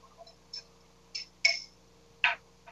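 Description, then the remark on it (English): A bar spoon clinks against a glass while stirring sugar with a touch of water in the bottom of the glass to break it down: about five light, irregular taps, two of them ringing bright and high, with no talking. “And then I'm just going to stir up that sugar a little bit, break it down.”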